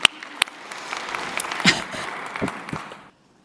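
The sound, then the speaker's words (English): A crowd applauds with dense, irregular clapping that holds steady for about three seconds, with a few sharper claps standing out, then stops abruptly into near silence. “Round of applause.”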